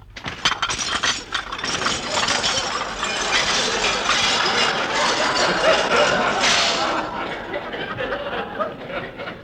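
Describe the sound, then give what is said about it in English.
A new dishwashing machine rattles and clanks loudly while dishes taken from the cupboard crash and shatter in a dense, continuous clatter of breaking crockery and clinking glass, with a sharp burst of smashing near the end. “I don't see why it should break the dishes.”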